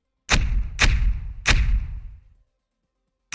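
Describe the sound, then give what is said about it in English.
Three heavy mortar launches, fired at the push of a button toward a warehouse, boom in quick succession, each a loud thump with a deep rumbling tail that fades out, then a fourth blast starts right at the end. “you just hear Spanner yell, "Fire in the hole!" Hits a button, and the mortar.”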